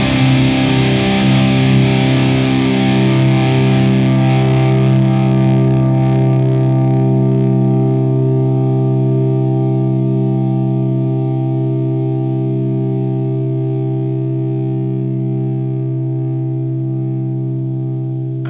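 A distorted electric guitar chord, with the amp's post gain turned back to about 2 o'clock and still clipping, rings out loudly, its gritty attack fading into a long, steady sustain that holds for many seconds, with no one speaking.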